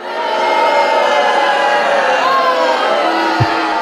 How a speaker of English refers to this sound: the audience, our massive in-studio audience, booed you to a man and woman.